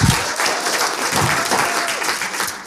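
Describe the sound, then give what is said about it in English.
An audience claps steadily, a dense, continuous patter of many hands with no pauses, fairly loud throughout, with a faint tonal whistle or hum drifting underneath. “Come on, we could put our hands together and clap there, man.”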